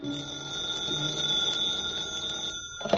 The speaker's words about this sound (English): When I got back to the room, the phone was ringing.